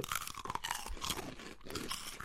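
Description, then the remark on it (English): Loud crunching of crisp cheese puffs (cheesies) being bitten and chewed, a dense run of brittle cracks filling a couple of seconds with no talking. “No, that's pure crunch. Oh, that is a hell of right? a crunch.”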